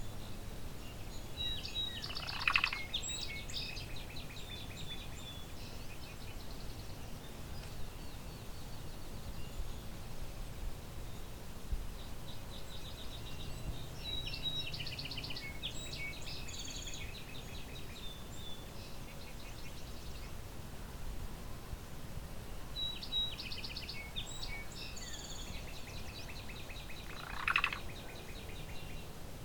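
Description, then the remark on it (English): Songs of song sparrows, a northern cardinal and a field sparrow, recorded at Vinemount Swamp on June 27, 2020, come in bright, scattered phrases every few seconds over a steady outdoor hiss, with no voices. “Lots of song sparrows around. Northern cardinal. Field sparrow.”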